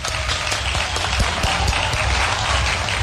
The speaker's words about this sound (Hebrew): תנו לו כפיים גם כן.